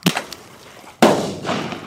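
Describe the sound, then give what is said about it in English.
Two sharp explosive bangs from bird bangers set off to scare eagles away: a softer pop, then about a second later a much louder crack that rings and fades slowly. No voices. “We can move them with the bird bangers.”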